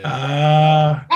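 A dog that wants to be let in lets out one long, drawn-out, whining bark, loud and steady for about a second, followed by a brief clipped sound, with no one talking.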